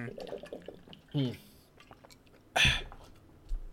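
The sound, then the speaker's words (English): Someone drinks water, with a couple of distinct wet gulps or swallows spaced about a second apart amid faint background noise. “Hey, hang on, I need some water for this one.”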